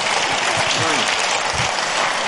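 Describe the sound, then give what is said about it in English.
A room full of people applauds the news of 900 counseling appointments in a year with a volunteer team, a dense, steady wash of clapping that stays loud and even throughout, with faint murmurs of voices beneath it. “Yeah, go ahead, clap.”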